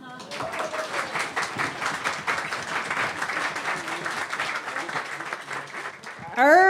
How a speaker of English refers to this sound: big round of applause. It's really hard to go first. Going first is the worst, and you did great.